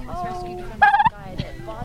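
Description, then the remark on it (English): A turkey lets out a short, loud burst of warbling gobbles, rising sharply over a low background hum, with fainter fowl-like calls before and after. “We're here interviewing the turkeys who have just had a great feast. How are you doing today, Mr. Turkey?”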